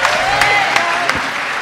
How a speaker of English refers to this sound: clap of praise today. Come on.